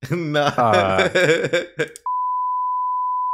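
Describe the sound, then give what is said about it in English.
A man talks for a couple of seconds, then a loud, steady censor bleep cuts in abruptly and drones on unbroken until the end. “bro, cut that censor cut that it's a beep on that real quick beep that oh great.”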